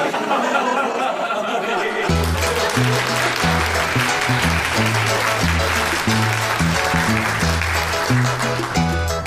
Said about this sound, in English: Ladies and gentlemen, can we have a big round of applause there for Sonia McCarthy, our lovely, lovely contestant all the way from Batterstown.